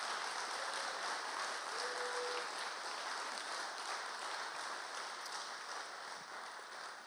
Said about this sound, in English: Hey, that was awesome. Let's give all these ladies one more round of applause.